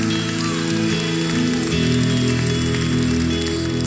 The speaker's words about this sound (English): Come on, stomp, shout, cheer, go crazy in Jesus' name.